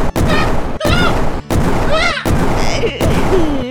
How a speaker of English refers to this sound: I'll combo into it with my cannons.